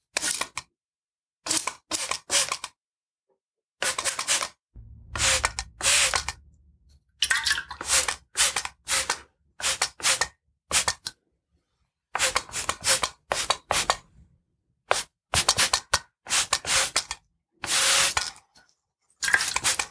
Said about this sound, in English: Now I'll just begin spraying, okay?